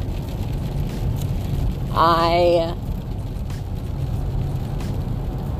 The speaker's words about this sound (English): Yes, it's like downpouring rain right now, if you can hear that on here.